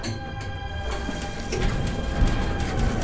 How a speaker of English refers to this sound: The elevator came to a stop, then the door slid open and everyone got out.